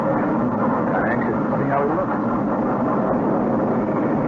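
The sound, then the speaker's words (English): A train pulls into a station with a steady, heavy mechanical rumble that stays loud throughout, a dense continuous roar without clear breaks or individual clanks. “Now here's the train. Right on time.”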